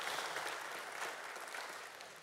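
A crowd claps steadily, applauding the announcement that a permanent home will be built for the South Campus, in a dense, even wash of applause that holds at the same level throughout, with no voices standing out above it.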